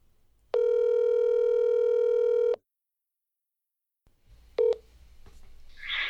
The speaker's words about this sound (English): I've got another phone call going here.